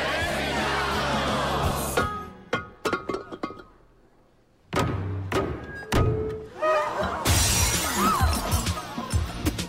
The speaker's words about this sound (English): Come on, it's vase breaking time. It's what? It's a tradition. The maid of honor shatters a vase, and it symbolizes happiness for the bride and groom. So smash it hard.